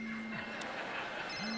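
A phone alarm goes off in the morning, sounding steadily, a sustained electronic tone that dips and glides back up in pitch, playing loudly and continuously with no one talking over it.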